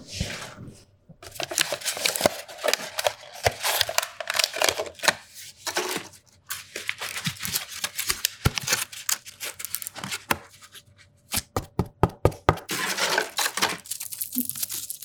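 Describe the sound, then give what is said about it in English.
Paper objects in a fiber artist's studio being handled and rustled, with continuous crinkling and crumpling, sharp tearing-like bursts, a run of quick snapping flicks near the end, and no voices. “Do you want to hear other paper sounds?”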